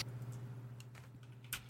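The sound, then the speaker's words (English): Soft, irregular keystrokes on a computer keyboard as a man pokes the keys with one index finger: a few scattered clicks, then a couple of sharper taps near the end, over a faint steady electrical hum, with no voices. “He just tap, tap, tap, tap, tap.”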